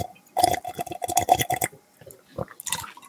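A wet, noisy slurp of a drink, a run of quick sucking bursts with a faint whistling edge, then a pause and a couple of shorter sips, with no talking.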